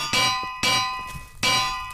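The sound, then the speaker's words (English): Three loud metallic clangs of anvils dropping in a video game, each a sharp ringing hit with bright sustained overtones that slowly decay, arriving in quick irregular succession with no voices. “Why are anvils getting dropped on me?”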